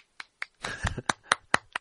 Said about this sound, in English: I'm applauding.